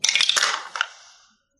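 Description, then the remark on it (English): A quick rattle of dice rolled for a perception check, tumbling across a hard tabletop and landing a 20, a burst of bright clicks followed by one last knock as they settle, with no voices. “why don't you roll me a perception check?”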